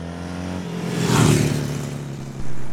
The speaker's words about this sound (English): Today I have a Ducati Monster, and these are legendary. They've been around since 1993. They feature a sporty engine, but perfect for road use, combined with a superbike-derived frame.